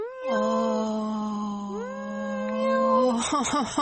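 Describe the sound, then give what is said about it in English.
A voice imitates a kitten's meow coming from inside a big gift box by a Christmas tree: one long, drawn-out mew held steady for about three seconds, then a quick wavering finish, fairly loud with no other sounds. “And on the inside, from the inside of the box, I heard, meow. Meow.”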